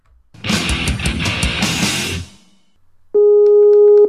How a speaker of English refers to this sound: That's Skype ringing.